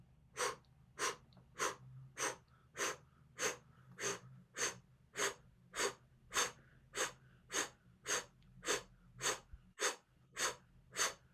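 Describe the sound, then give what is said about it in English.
A rapid, steady series of about twenty sharp, forceful exhaled blow breaths through the diaphragm during a breathing exercise, evenly spaced roughly twice per second, fairly loud, with no talking over them. “Now we're just going to start the blow breath. Breathing through the diaphragm, just out.”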